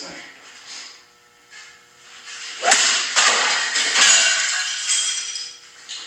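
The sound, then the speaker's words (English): A golf club smashes into a Keurig coffee maker in a garage while it rains outside: a sharp, loud crack followed by a run of harsh crunching, clattering hits, with a faint hiss and rattle as the pieces break apart. “So that you can really crush this thing. Now, here we go. He's about to hit it.”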